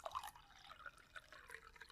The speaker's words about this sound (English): A glass of water.